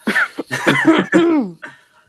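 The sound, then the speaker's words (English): A loud bout of wet, phlegmy coughing: several throaty hacking bursts in quick succession over about two seconds, then a short trailing cough, with no talking. “There's that good Corona cough.”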